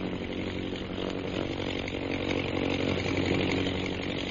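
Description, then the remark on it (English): The engine of one of the circling bomber or scout planes drones steadily with a rough, buzzing hum that swells gradually louder over a few seconds as it comes this way. No voices are heard. “Both the bombers and scouts are concentrating. One's coming this way.”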